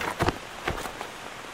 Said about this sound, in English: The storm clouds broke, and the rain descended from above violently.